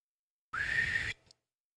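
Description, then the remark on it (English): A single short, spluttery whistle from a person, breathy and rough with a wavering pitch, blown fairly loud for about half a second before cutting off with a faint sputter. “does a really spluttery whistle.”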